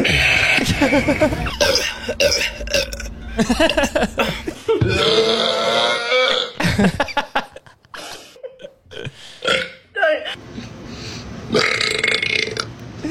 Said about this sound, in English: That was a good one. That was a belch. Her lung came out.